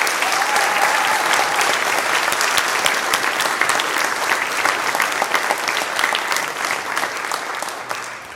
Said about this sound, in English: Let's give our graduating class another clap.